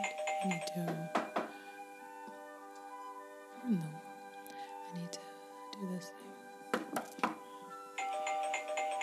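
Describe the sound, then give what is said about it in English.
A doorbell rings with sustained, layered chime tones that linger and overlap, punctuated by a few sharp clicks and short low bursts; no one speaks. “Is someone gonna get the door?”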